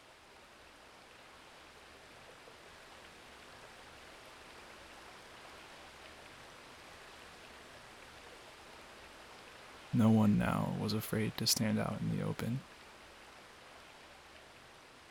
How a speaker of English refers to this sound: Now the rain became softer. Its broad patter could be heard everywhere for the next hour.